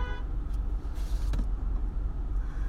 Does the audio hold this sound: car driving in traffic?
yes